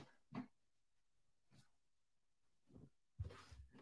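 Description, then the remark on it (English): A dog chews and tugs at a pillow from its little bed of pillows, producing a few irregular bursts of snuffly gnawing and rustling, with the last burst the loudest and longest. No one speaks. “My fucking dog's eating a pillow over here.”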